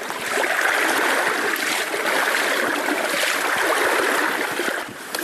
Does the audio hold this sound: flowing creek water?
yes